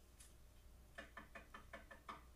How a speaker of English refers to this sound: When they knock on the door, they knock to the beat of that chant.